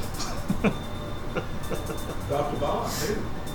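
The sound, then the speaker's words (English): A steady, broad roar of airplanes passing overhead fills the background, with a brighter hiss swelling near the end while people talk over it. “Had to listen as that went by because the planes sound cool.”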